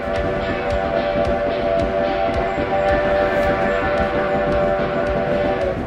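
A train whistle sounds in a long, steady harmonic tone over a continuous rumbling clatter of a train getting underway, loud throughout, with no one talking.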